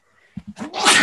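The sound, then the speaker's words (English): A single loud sneeze: a few short sharp inhaling catches building up, then a forceful breathy burst of noise that fills the end of the moment. “Bless you. Bless you.”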